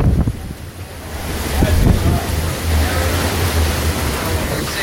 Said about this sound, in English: Now it's really kicking. I don't know what to say. It's as hard as I've seen so far tonight. Definitely seeing 120 gust. No trees down yet.